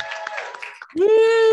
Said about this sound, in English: So please give a round of applause to CT Improv in general.